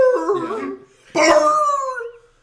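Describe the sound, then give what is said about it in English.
A man's voice imitates a wrestler's "ar-ar-ar" yelping, howling dog sound in two loud bursts: a wavering whine, a brief pause, then a sharp yelp that stretches into a long, falling howl. “He sounds like a dog getting like shot.”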